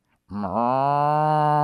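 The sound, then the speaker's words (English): A single long, loud moo from a cow called Bossy that starts with a brief dip in pitch and then holds a steady, droning tone to the end with no other sounds around it. “Listen, I don't care how many times and ways you try to engineer a piece of soybean or grain, it's never going to taste like a nice juicy piece of protein that came from Bossy the cow.”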